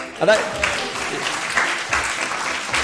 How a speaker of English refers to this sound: There's some clapping and cheering from alive people out there.